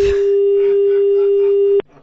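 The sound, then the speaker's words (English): A loud, steady telephone dial tone hums at a single pitch for nearly two seconds after the other party hung up, then cuts off abruptly, leaving faint background noise. “how dare you put the phone down on madam?”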